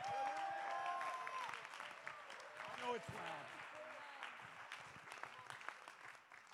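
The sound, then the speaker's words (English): An audience claps in a dense, continuous burst of applause for several seconds at a pastor's call, with voices shouting and calling out over the clapping, which eases off slightly toward the end. “Somebody clap.”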